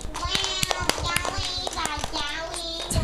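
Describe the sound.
A group of children applauding, with uneven, overlapping claps throughout and high young voices calling and cheering over them at a steady, lively level.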